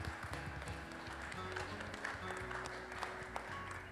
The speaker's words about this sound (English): Happy Mother's Day. Can we give our mothers a round of applause? Everybody.